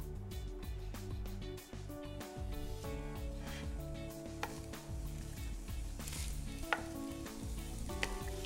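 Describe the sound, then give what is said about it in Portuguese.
Steady sizzling of tomato, onion and bell pepper sautéing in a pan over medium heat for a moqueca, with occasional scrapes and clicks of a utensil stirring them, continuous with no talking. “Então, coloque tudo na panela e comece a refogar.”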